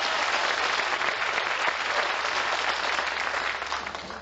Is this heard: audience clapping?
yes